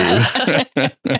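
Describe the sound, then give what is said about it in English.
A strained, choking gasp as a breath goes down wrong, followed by two short, harsh coughing bursts with brief silences between them; no talking over it. “I was breathing in and it just like went south.”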